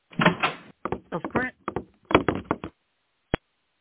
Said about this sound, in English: Whoa, the kitchen door bursts open.